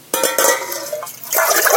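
High-alkaline Kangen water pours into a larger pan, a steady splashing stream with a bright, rising tone that swells louder near the end as the pan fills.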